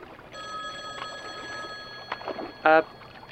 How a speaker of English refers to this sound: the payphone, that's here for some reason. It's ringing.